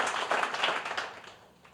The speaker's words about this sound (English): Give the Lord one more great big hand clap and you can be seated.